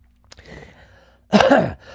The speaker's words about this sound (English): Sorry, my throat's been a little icky sticky with all this crap blowing in. Sorry if I coughed in your ear. I did not mean to.